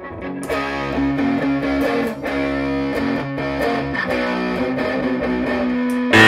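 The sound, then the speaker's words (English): A distorted electric guitar, played through an MXR without a distortion pedal, plays chugging riffs and sustained chords, loud, with a gritty, saturated tone throughout and a brief sharp burst at the end; no one speaks. “I mean, I don't need a distortion pedal. Listen to that.”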